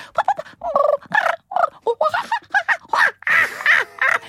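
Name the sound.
voice imitating bird calls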